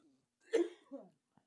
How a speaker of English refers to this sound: And she's choking.